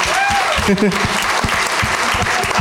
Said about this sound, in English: You're vaccinated and have a mask on at a show. Let's applaud this guy, everybody.